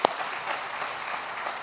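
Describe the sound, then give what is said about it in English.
A crowd applauds with dense, steady clapping that holds an even loudness throughout, a bright crackling wash with no voices over it. “Yeah, let's just give her a round of applause.”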